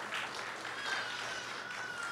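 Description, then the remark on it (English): An audience claps together in a steady, dense wash of applause that holds at an even level for the whole couple of seconds, with no voices standing out. “Give them a hand clap.”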